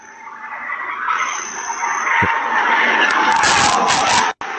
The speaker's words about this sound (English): And then you can hear the crash. You can hear the distortion. And that's most of what we have. There is another video of the car speeding by. It's only a few seconds.